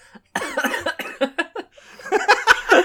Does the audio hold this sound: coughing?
yes